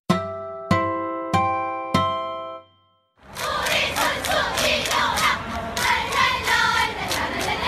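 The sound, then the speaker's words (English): Four ringing chime strikes, evenly spaced and slowly decaying, give way to the North Korean cheering squad at the 2018 Winter Olympics chanting loudly in unison, the massed voices rising and falling in steady rhythmic pulses. “You just heard the North Korean cheering squad at the 2018 Winter Olympics.”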